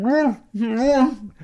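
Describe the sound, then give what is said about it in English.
A person's voice imitates a dog trying to talk with peanut butter stuck to the roof of its mouth: two drawn-out, wordless mumbling phrases with wavering pitch, fairly loud, separated by a brief pause. “All the dogs talk like this.”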